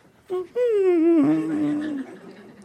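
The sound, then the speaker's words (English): A person imitates a dog's whimper: a short lead-in noise, then one drawn-out, wavering whine that slides slowly downward and fades, fairly loud, with no talking. “And he remembers his toy, his best friend. And he goes...”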